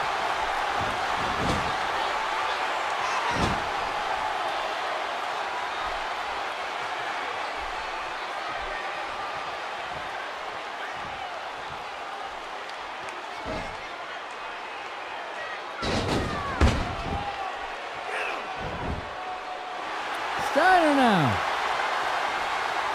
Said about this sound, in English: Oh, Steiner now. Drops the elbow. As the crowd is going absolutely crazy right now.